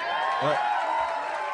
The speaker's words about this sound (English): That's the first time that's been applauded anywhere near Boston. Like we're in Brooklyn as a sold out crowd. It's like people are cheering for a Ray of Frost spell.